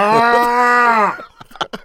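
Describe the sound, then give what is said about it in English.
A person lets out one long, loud, drawn-out moo, imitating a cow, for about a second before it trails off into a few quick bursts of speech. “imagine you trying to choke this, and the cow's allowed to fight back.”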